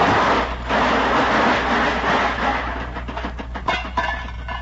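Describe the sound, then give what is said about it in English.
A car crashes into a pole, which it only nudged, and is left all smashed to bits: a loud, sustained grinding roar of crumpling metal that breaks into scattered rattles and clattering bits toward the end, with no voices. “Just look at that car. It's all smashed to bits. Yeah, and I just nudged that pole with it and it fell apart.”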